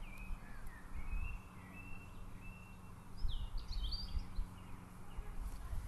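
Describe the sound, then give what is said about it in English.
Faint, thin bird calls, a few high whistles and short chirps, drift in from a distance over a steady low rumble of distant vehicles, heard while standing in a country lane, with a brief cluster of chirps in the middle. “I think I can hear the call of the sparrow finch.”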